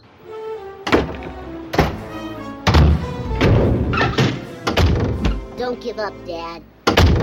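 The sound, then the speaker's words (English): A string of doors slam shut in a man's face one after another, the last one his own, six or seven loud, sharp thuds at uneven intervals, over a busy background of music and indistinct voices. “That's a very good gag, the fact that the last door gets slammed in his face is, in fact, his own.”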